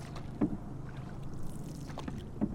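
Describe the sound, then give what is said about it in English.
A canoe paddle dips and pulls through the water of the Mississippi River, paddling upstream in a few slow, spaced strokes, with soft splashes and a steady wash of moving water and light wind. No one speaks. “Then it's time to carry the canoe down to the river's edge and get paddling upstream.”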